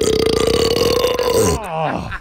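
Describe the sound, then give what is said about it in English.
A long, loud belch, a steady croaking rumble for over a second that breaks and trails off with a wavering, falling tail at the end. “And now, belch number three.”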